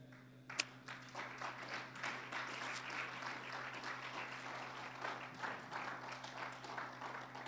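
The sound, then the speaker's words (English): A church audience breaks into steady applause during a sermon, a dense wash of many hands clapping that starts abruptly and holds at an even level, with a faint low hum running underneath. “Well, I didn't do that for applause.”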